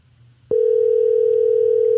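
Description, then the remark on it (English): After a moment of low hum, a steady, single-pitched telephone ring tone switches on and holds loud and unbroken to the end, like an outgoing call ringing through. No one speaks. “She better answer.”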